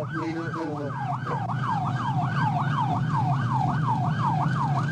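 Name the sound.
police car siren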